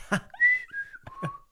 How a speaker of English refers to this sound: Start whistling.